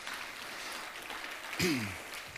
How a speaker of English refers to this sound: God's been faithful. So can we give God an applause this morning for his faithfulness?